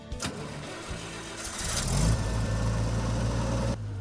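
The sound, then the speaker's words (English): A family-owned Farmall 706 gas tractor, built in the late 1960s or early 1970s with the larger of two gas engines, cranks and catches, then settles into a steady, throaty idle, with a low rumbling hum that cuts off near the end. “we're going to share with you a story of a family-owned Farmall 706 gas”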